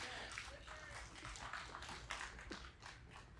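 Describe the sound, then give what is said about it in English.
Sparse, scattered clapping from a small audience of about 14 people: a few hands clapping out of sync, giving short irregular sharp slaps over a low steady rumble. “It's like 14 of you, I think we're clapping.”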